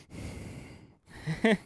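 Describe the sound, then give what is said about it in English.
A person does exaggerated heavy breathing: a long, noisy breathy exhale, a brief pause, then a shorter, voiced, gasping breath that rises at the end. “Like heavy breathing.”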